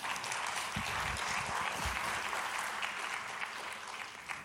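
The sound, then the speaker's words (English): A church audience claps steadily throughout, a dense, continuous wash of many hands applauding together, sustained at an even level for several seconds. “I need to make y'all clap more.”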